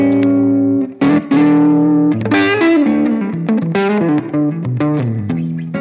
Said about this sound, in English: one of my favorite things on this board is the Synesthesia from GFI. This is a total secret weapon. So right now, this is a bad vinyl preset. So it's like a really warped vinyl pitch modulation kind of sound. And then on top of a like spring reverb.